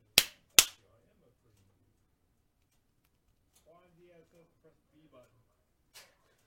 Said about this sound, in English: Do a clap again?